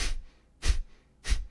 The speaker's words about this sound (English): And same with like a breathing technique, like Kapalabhati, you're doing this.